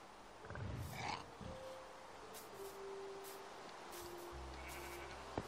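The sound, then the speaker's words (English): A single short sheep bleat rises early on over a constant wash of background noise, followed by faint, steady droning tones and a small click near the end. No one speaks. “Now, I'm gonna have to destroy that sheep there.”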